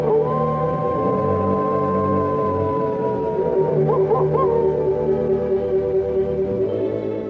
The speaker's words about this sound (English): And also, I never heard so many wolves.